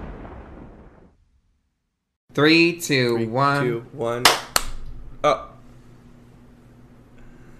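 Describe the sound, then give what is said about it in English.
Two people clap their hands: a few sharp, bright claps land close together, nearly in unison, right after a voice speaks briefly, then a faint steady hum remains. “Oh, I mean, we clapped at the same time, no, though.”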